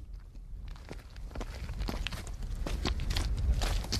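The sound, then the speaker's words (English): Footsteps crunch along a rough mountain footpath, a steady series of gritty treads over a low outdoor rumble, growing slightly louder as the walker continues. “This is the footpath. This is time-served stuff, this, what we're treading.”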